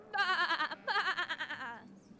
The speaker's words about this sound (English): And I made enough money to go to the garlic festival! And right at the petting zoo, we saw some goats.